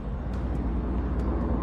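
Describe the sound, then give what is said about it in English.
A continuous low roar of military planes in the sky over Rostov, Russia, steady and rumbling with no breaks, heavy in the low end, with no voices present. “Unverified local reports say that the sound of military planes can be heard in the sky somewhere over Rostov.”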